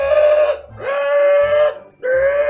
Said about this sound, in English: Maybe 10 seconds after you walk in the room and start cutting chains, the alarm does sound. The siren.